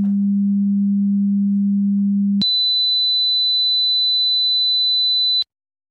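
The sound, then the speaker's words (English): A steady low sine test tone hums for about two and a half seconds, then switches abruptly to a high, piercing sine test tone that holds for three seconds before cutting off into silence; both tones measure exactly -23 dBFS on a standard meter. “So there's that perception of the two tones. We hear it as two different levels, and the Luft's meter shows us those as two different levels.”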